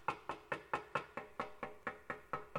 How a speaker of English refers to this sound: In Revelation chapter 3, verse 20, he said, Behold, I stand at the door and I knock.